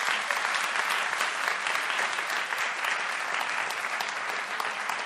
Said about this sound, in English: I didn't know that was an applause line, but thank you.